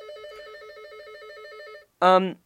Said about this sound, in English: That's not my phone, is it? No, let me just... Sorry, okay. It's my studio phone.